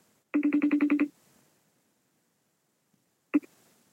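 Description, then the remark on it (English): A phone rings during an outgoing call with a quick, clear burst of about eight rapid pulsed tones lasting under a second, then silence, and one brief tone near the end. No one speaks. “might answer the phone right now if we call him and just see.”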